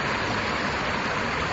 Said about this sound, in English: We're passing City Hall right now, and here's water trickling.